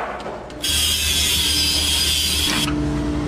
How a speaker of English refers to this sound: Speaking of that noise, I just got a chainsaw.